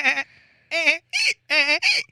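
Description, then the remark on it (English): A person imitates a sheep, letting out five short, wavering bleats in quick succession with brief pauses between them, loud. “You sound like a dying pig mixed with the sheep.”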